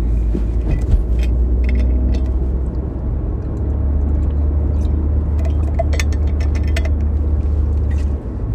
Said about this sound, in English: Sorry, I'm driving to work. It's a Monday morning